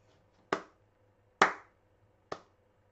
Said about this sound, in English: Yeah, golf clap.